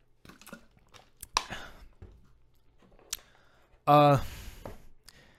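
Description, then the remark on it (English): Someone takes a drink of water: soft lip smacks, small sips and a swallow, then a brief voiced exhale after drinking. “Hold on, let me get a sip of my water.”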